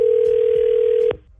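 A telephone line rings out on a call placed by the B98.5 radio show, with a single steady electronic tone, loud and clear for about a second before it cuts off abruptly. No one speaks.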